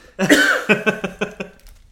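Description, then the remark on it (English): Sputtering coughing: a strained, drawn-out hack, then a quick run of five short, evenly spaced coughs that fade, from someone choking on water. “So I'm choking on water now.”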